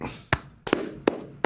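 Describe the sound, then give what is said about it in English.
A handful of sharp palm-to-palm hand claps made with flat, slightly cupped hands, four or five crisp slaps spaced roughly evenly, one landing as a quick double, with no voices. “You want palm-to-palm action.”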